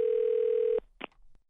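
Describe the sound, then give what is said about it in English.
A steady, buzzy telephone dial tone at the start of a prank phone call holds one pitch for under a second and cuts off abruptly, followed by a short crackly burst and a faint click. “it is the nephew in the building with today's prank phone call.”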